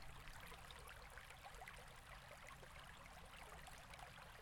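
nature, running water

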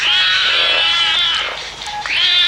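animal, cat meowing

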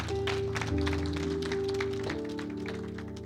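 crowd, audience applause

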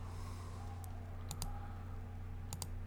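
machine, computer clicking

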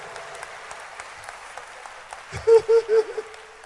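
crowd, audience clapping hands

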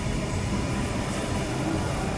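vehicle, train passing nearby

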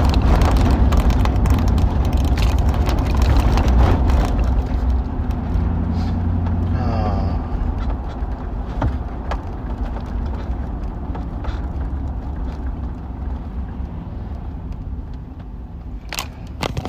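vehicle, car driving

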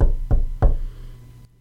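impact, knocking on a door

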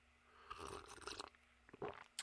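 food or drink, sipping cold brew coffee

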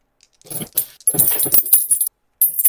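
dice being rolled

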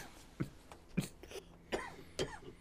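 human body sound, coughing fit

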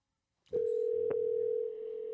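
signal or alarm, telephone dial tone

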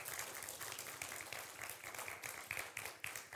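crowd, audience hand clapping

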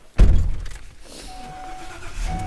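vehicle, car driving

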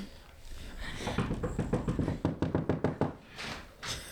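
impact, knocking on a wall

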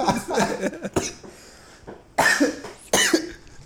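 human body sound, person coughing

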